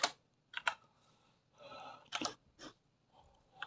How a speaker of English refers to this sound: I'm going to punch my big clicky keys in here into Spotify and figure out when the last time I posted was Ram.